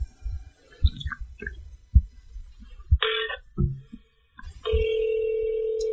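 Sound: phone call ringing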